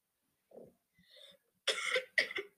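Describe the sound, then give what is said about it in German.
Someone fakes a cough: a soft throaty sound and a faint breath, then two loud forced coughs in quick succession. No one speaks. “Hast du gehört, wie fake ich huste?”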